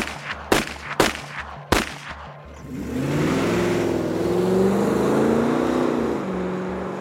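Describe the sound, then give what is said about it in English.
Three sharp, loud gunshots crack in quick succession at night, fired from a car that has pulled alongside a slowing truck, then the car's engine roars up and revs hard as it speeds away, its drone holding steady to the end. “in the evening and getting dark when the truck slows and the car behind them pulls alongside. Multiple shots ring out into the night.”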